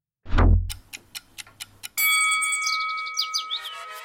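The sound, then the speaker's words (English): A ticking clock timer sound effect starting a timed round of tweets: a low thump, then about six quick, evenly spaced ticks, followed by a loud sustained bell-like ding that rings on to the end. No one speaks. “All right, clock starts when the first tweet goes up.”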